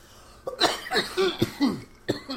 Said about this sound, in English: Hold on, I got a cough.